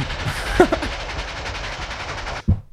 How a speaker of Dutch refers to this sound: Oh, hoorde je dat? Wat was dat voor geluid? Oh. Hey, een trein. Er rijdt een trein de berg op.